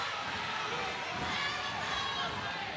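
A raucous crowd at a basketball game between the Spartans and Sun Valley roars and cheers continuously, a dense wall of many voices shouting at once, loud and steady throughout with no pauses.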